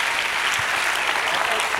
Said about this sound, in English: Somebody better clap your hands and give God a praise this morning for that.